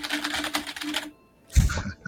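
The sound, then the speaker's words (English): A burst of fast, dense computer keyboard clattering for about a second, a brief pause, then a heavy thud as the keyboard is smashed, followed by more loud rattling. “That's because I smashed my keyboard.”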